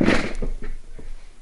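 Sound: chair being moved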